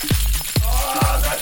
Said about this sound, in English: Oh, key jingle. Hang on. We're going to get some more keys.